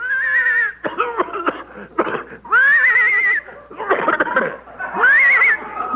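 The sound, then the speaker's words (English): A horse towing a car by rope toward Palm Springs whinnies in three loud, wavering bursts, with rough, choppy snorting sounds between them, clear for about six seconds. “I think the horse is horse.”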